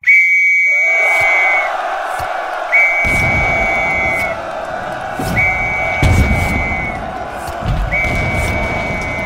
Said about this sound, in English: The whistle blew, and the boys went over the top.